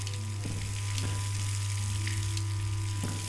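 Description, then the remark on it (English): Steady running water pours continuously from a tap, a broad hissing rush with a low hum underneath and a few faint clicks, with no one speaking. “When you turn the water off, the glow stops.”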